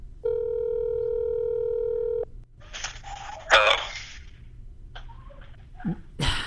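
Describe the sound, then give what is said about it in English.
A phone call goes out: a steady electronic ringing tone holds for about two seconds, then cuts off into soft handset rustling, faint clicks and muffled line noise, with no one speaking. “So let's call him.”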